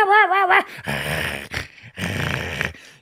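Two small dogs, of 7 and 13 pounds, snarl at a 5-foot-tall figure sitting in the entryway, opening with a short, high, wavering whine before two rough, rumbling bursts of growling. No one talks.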